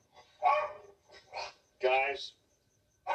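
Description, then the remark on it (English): Dogs at home bark in a few loud, separate bursts, roughly three or four barks spaced about a second apart with short quiet gaps between them. “the dogs are home”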